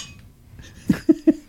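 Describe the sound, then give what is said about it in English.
Three sharp clinks of glass or dishware ring out, the first a little apart and the last two in quick succession, each with a brief bright ring over a quiet background. “It almost sounded like you said parks and clink. Clink?”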